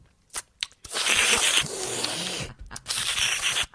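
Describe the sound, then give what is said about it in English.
Loud, wet open-mouthed chewing of pistachios, the way wrestler Zack Ryder eats them: a few sharp cracks, then sustained smacking, crunching bursts with a brief pause midway, no talking. “If you ever drove with Zack Ryder and pistachios, this is what you'll hear.”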